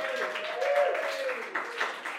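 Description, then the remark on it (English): A crowd applauds steadily for Sarah Pascoe at the end of her set, a dense wash of overlapping claps at moderate volume, with a faint sustained tone running underneath for the first half. “Brilliant. Round of applause for Sarah Pascoe, everybody.”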